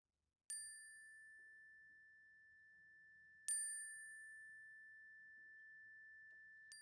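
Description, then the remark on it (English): A clear bell-like chime strikes three times at slow, even intervals during a time of prayer, each tone ringing out and sustaining with a long, gradual decay. No voices are present, just the resonant ringing against quiet background. “I invite you to call those people and places to mind now and to speak their names or write them in the chat box as the chime rings so that we can hold them with you.”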